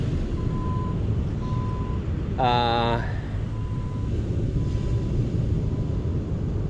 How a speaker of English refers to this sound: And then was in the room, and there's a truck going by.